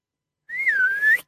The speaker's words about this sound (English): Here, boy, whistled the girl to the family dog. Come and help us harvest this enormous turnip.